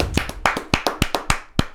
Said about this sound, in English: … getting his star on the Hollywood Walk of Fame. Let's clap it up for a brother. He did well.